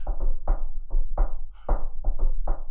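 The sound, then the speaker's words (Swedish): Knocking on a wooden table, about ten fairly loud raps played in a loose rhythmic pattern, some in quick pairs, with nothing else audible. “Det är som, man, som du säger, nu ska jag röra bordet igen.”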